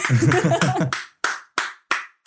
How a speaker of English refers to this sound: Oh, that is a Norteño clap if I've ever heard one.